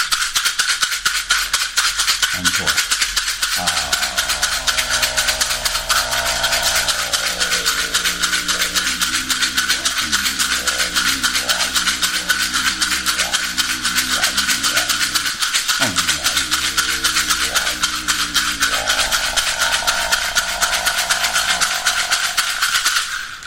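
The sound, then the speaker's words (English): A rattle shaken rapidly and steadily for over twenty seconds, making a loud, dense, hissing swish. A low, wavering hum sounds faintly underneath. “And then a little work with the rattle.”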